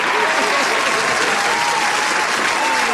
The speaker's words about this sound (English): round of applause for …